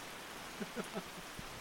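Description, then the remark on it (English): Heavy rain pours down on a campsite in a deluge, a steady, dense hiss that fills the whole clip, with a few brief, faint vocal sounds poking through partway in. “As we get just dumped on by this rain, we're in a deluge.”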